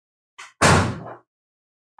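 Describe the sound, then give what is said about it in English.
A lounge door swings shut with a firm thud after a dog, Yogi, is put in the lounge, preceded by a brief rustle of the latch and followed by a short ringing decay, then quiet with a faint click at the end. “I'm going to put him in the lounge and then close the door.”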